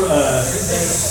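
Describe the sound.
A person imitates a hissing crowd with a steady, breathy hiss lasting about a second, fairly loud and even throughout, with faint voiced undertones beneath it.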